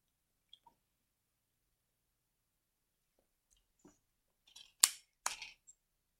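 Someone takes a quick drink of water: mostly quiet, then a few soft clicks and two sharp wet crackles of sipping and handling a bottle, with no talking.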